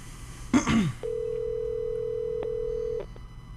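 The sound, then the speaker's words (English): A short throat-clearing noise, then a steady electronic ringback tone from an outgoing phone call for an interview hums for about two seconds before cutting off, clear, like it's coming through the handset. “It's ringing.”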